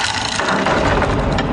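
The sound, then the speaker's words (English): A heavy wooden door, newly delivered from Medieval Installers, creaks open in one long, loud, groaning sweep, its low rattling grind stretching unbroken for about a second and a half, with no voices. “Ah, my new door from Medieval Installers finally came.”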